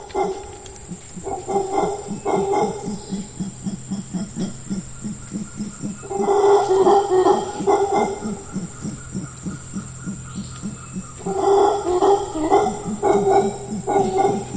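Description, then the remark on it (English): Howler monkeys roar in deep, guttural, pulsing bursts that swell in three waves, rising and fading over a steady high-pitched insect drone in a forest in Costa Rica. “The sounds of howler monkeys recorded in the forests of Costa Rica.”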